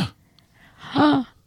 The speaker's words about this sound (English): Gasp.